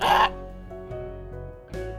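A raven gives a loud, harsh caw, then a quieter stretch of murmuring tones before a second, rougher call begins at the end.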